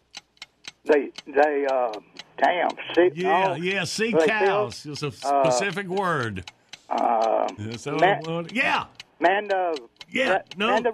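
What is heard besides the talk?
ticking game clock countdown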